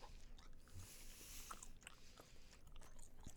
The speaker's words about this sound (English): And then you chew that shit and you just suck on it, pause, and just suck the juices out.